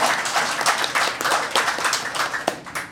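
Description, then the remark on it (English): An audience at a quiz competition applauds a team called the Dorothy L. Slayers steadily for three seconds, a dense crackle of many hands clapping at once, loud and sustained with no voices rising above it. “Round of applause for the Dorothy L.”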